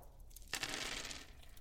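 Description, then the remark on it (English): Dice clatter and rattle briefly across a table, a quick burst of bright clicking that starts abruptly and fades out within about a second, fairly quiet. “Some dice.”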